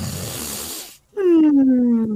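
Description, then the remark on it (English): A person, acting as Foley artist, imitates the typical orc snore of Rorison, who is passed out: a raspy, breathy inhale, a brief pause, then a loud, growling voiced exhale that slides downward in pitch. “Yeah, Rorison is passed out as well, doing his typical orc snore.”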